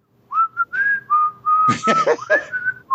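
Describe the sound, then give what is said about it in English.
A person whistles a simple tune, a string of clear held notes rising and falling, briefly broken midway by breathy noisy bursts before the melody carries on. “I can't whistle it.”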